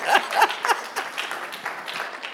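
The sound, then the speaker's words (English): A crowd claps together for a pastor in a steady, dense patter of many hands, holding at a moderate level from start to finish with a few faint voices mixed in. “No, but let's clap for Pastor PCN for being an angel and a saint.”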